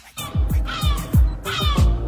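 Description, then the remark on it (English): A voice imitates a seagull's scream: a run of harsh, screechy squawks repeated in quick succession, loud, with no talking. “Just because you know how they do that screamy thing at yeah, the do it again.”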